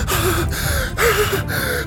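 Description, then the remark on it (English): A flustered man sitting down breathes heavily: ragged, voiced gasping breaths in quick succession, about four pulls of air in two seconds with a strained, wheezy edge. “He looks like he's covered in blood or wounded, and he's sitting there breathing heavily.”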